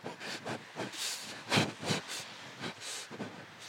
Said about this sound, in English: And then I saw a little model train, so I got on it.